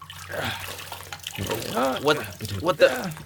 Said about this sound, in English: And let's pour this dead alien juice all over the floor.